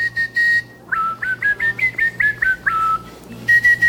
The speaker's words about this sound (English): All right, but the interesting thing, I can whistle with my tongue, so no lips.